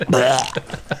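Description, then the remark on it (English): A loud, wet belch from drinking beer while running a race, a drawn-out croaking burp lasting about half a second, followed by three short, gurgling bursts. “And about two-thirds of the way through your first loop, you start belching. And it's those wet, nasty belches, you know.”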